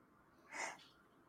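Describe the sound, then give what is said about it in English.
A single short sneeze bursts out over a quiet background, a breathy, hissing rush lasting under half a second, followed by a sudden loud noise right at the end. “And bless you.”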